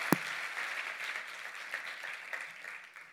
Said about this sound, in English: So please, can you give her a huge round of applause as she shares with us?